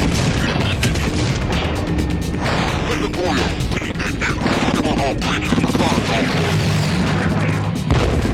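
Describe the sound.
Heavy ordnance explosions from incoming fire launched from multiple directions pound a spaceship's hull in a dense, continuous barrage of loud booms and crashing impacts, relentless, with voices mixed in beneath the chaos.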